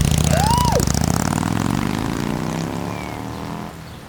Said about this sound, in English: And then right as the motorcycle pulled up to my house, he asked me out.